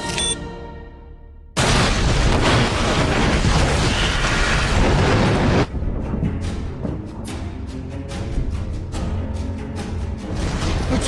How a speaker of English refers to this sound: Now, I've listened to that explosion about half a dozen times over, and I'm pretty certain there's a Wilhelm scream mixed in there. It's really subtle, but I don't think I'm imagining it.